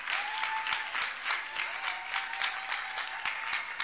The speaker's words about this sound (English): God bless you. Please take your seat. Clap for them once again.